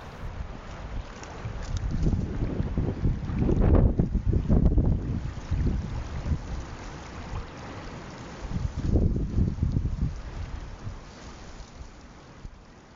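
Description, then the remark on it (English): Blustery wind roars across an open beach in Nova Scotia on a windy afternoon, buffeting the microphone with low rumbles that swell into two strong gusts before easing, and no voices are heard. “And then to my mom's home province of Nova Scotia where we walked together on the beach on a windy afternoon.”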